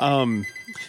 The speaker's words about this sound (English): The phone's ringing, so I don't know what to do with that.